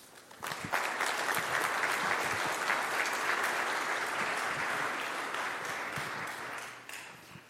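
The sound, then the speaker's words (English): A crowd breaks into sustained applause to warmly welcome two missionaries coming up to speak, a dense wash of many hands clapping that swells quickly, holds steady for several seconds, then tapers off at the end. “Would you give them a warm welcome?”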